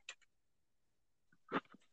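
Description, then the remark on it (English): A hungry stomach growls in two short, gurgling bursts: a brief faint one at the start, then a louder, rougher rumble after a pause of quiet. No one speaks. “You start to hear a growl.”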